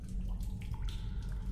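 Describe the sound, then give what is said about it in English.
Water drips in a few scattered plinks over a steady low rumble, with no voices, giving a hollow, echoing feel. “Endless silence, except for the dripping water.”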